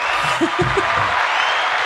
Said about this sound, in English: I feel like every guest needs an applause.